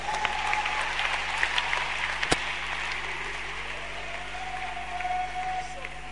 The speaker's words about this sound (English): Clap for Jesus.